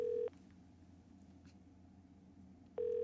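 Two short telephone keypad dialing tones as someone places a phone call, one at the start and one near the end, separated by a few seconds of quiet low hum. Clear, with no talking.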